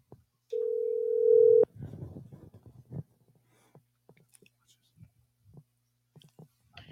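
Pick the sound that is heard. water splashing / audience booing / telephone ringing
telephone ringing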